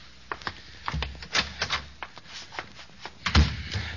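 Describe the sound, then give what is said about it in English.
A closet door is handled: a quick run of clicks and rattles, a softer bump as it opens, then a heavier thud as it shuts, with no voices. “I'll go in the closet here, and I'll close the door and turn on the light there.”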